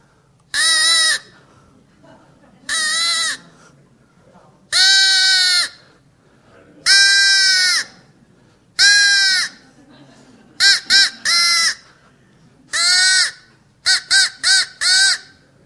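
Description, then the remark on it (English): A duck call blown by a man during a church sermon: loud, nasal quacking blasts, first several long drawn-out calls spaced apart, then quicker bursts of short quacks in twos and threes, with no talking over them. “But you know what's going to bring the ducks?”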